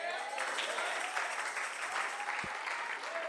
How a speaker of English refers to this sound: The Bible said, clap your hands, all ye people.